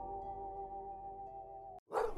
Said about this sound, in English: The neighbor's dog can be scary too, with his loud barks and thousands of teeth. But my mom says the dog is just saying hello.